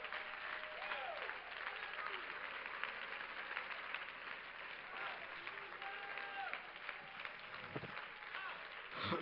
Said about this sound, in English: If you know who I'm talking about, will you just clap your hands to the Lord just for a moment?